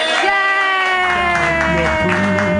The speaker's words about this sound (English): No one, everyone loved it so much. Yeah. If you loved it that much, clap wildly.